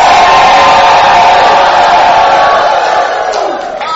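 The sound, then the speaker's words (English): A crowd erupts in loud, sustained shouting and cheering in praise of the Lord at a preacher's call. Many voices blend into a dense roar that holds steady for several seconds before tapering slightly at the end. “Give the Lord a shout.”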